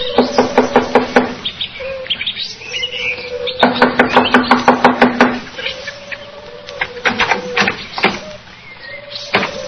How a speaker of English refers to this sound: Here we are. I'll knock on the door.